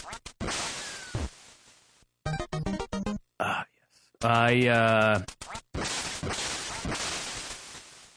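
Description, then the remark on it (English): Retro video game sound effects from the game Duck Hunt: a few sharp electronic bursts and swishes, then a loud, buzzy electronic duck quack that wavers for about a second, followed by more noisy effects. “I really like the game Duck Hunt, but recently my girlfriend told me that I spend too much time playing Duck Hunt.”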